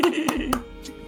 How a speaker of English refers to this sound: That was a clap without... I'm trying not to overwhelm the microphone.